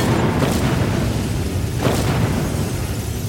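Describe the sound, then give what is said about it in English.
A heavy, sustained crash: deep rumbling roar with two sharp booming impacts as the spaceship Secret Rumor crashes into the basement of a building, loud throughout with no voices. “The secret rumor crashes into the basement of this building.”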